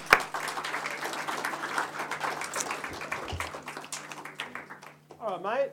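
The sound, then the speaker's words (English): An audience claps steadily for several seconds for a young boy who has volunteered and is coming down to the front, a dense patter of many hands that gradually thins out before a voice starts speaking at the end. “Give him a little clap.”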